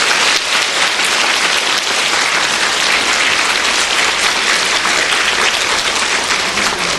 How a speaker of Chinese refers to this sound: 让我们再以热烈的掌声感谢上司回答大家的问题。